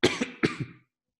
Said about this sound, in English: Because I've had a cough, like a slight cough. Like, it doesn't hurt. It's just like really dry. And yeah, just like almost nothing, like a tickle in my throat.